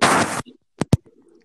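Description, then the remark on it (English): A short, breathy fart: a burst of airy hiss lasting under half a second, then two quick, sharp pops in succession, with no talking. “Yeah, I farted.”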